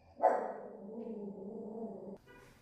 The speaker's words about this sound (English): I need to get a studio because my dog is barking and she's interrupting my flow.